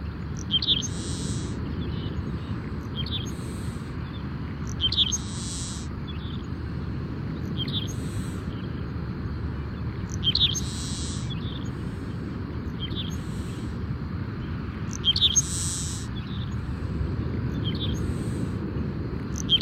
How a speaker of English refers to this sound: And there's another clapper rail.